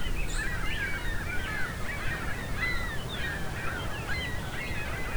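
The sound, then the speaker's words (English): A flock of gulls calls nonstop, their overlapping squawks and yelps tumbling over one another at a steady, moderate loudness against a low outdoor rumble, with no one speaking. “These gulls are rather incessant.”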